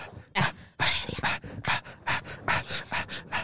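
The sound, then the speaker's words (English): A dog pants rapidly, a quick series of breathy bursts mixed with small high whimpers, about ten pulses in a steady, excited rhythm with no talking. “Sorry, dog. What is happening?”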